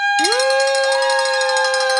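A hand bell, rung for the people who have called in, rings loudly and without pause, its bright metallic tones holding steady under a rapid, shimmering clatter of strikes for about two seconds. No voices are heard.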